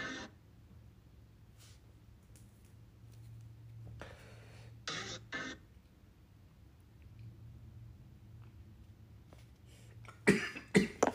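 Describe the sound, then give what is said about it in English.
Several harsh coughs in short bursts, a pair around the middle and a louder cluster near the end, over a low steady hum with no talking. “I need to quit coughing, man.”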